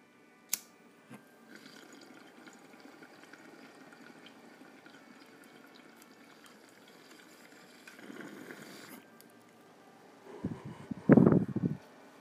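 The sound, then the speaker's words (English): Soft, steady bubbling gurgles through water from a bong during a hit for several seconds, swells briefly, then erupts into a louder burst of rapid bubbling near the end. A single sharp click comes early. “and this bong talks for you.”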